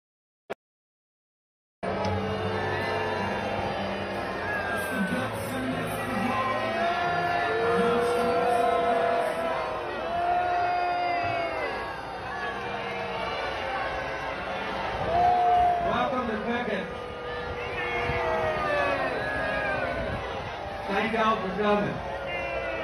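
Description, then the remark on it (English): A crowd at a fundraiser reacts as Lindsey Graham is brought out, with a dense, steady roar of overlapping voices, individual shouts and calls rising above the din now and then, continuing loudly for about twenty seconds after a brief silence. “And so, again, idiot Trump rolling out the wrong people at the wrong time for the wrong things, rolls out Lindsey effing Graham at a fundraiser here. Listen to the crowd.”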